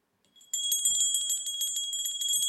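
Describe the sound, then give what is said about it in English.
A small toy bell rings continuously in rapid, jingling shakes, high-pitched and bright, with a couple of soft low thumps; no one speaks. “Actually, this bell is my grandson's favorite toy.”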